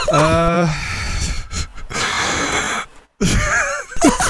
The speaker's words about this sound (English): The deep breathing, too. The sighing.